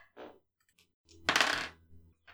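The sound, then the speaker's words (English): Dice clatter and tumble across a hard tabletop in a bright, rattling burst lasting about half a second, preceded and followed by a few small clicks and taps. “Just gonna have to roll some dice.”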